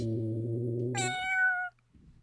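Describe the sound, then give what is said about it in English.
A person imitates a cat's meow, a single drawn-out call that starts low and buzzy, then jumps to a higher, brighter pitch before stopping abruptly. It sounds fairly loud. “Meow. Meow. Meow.”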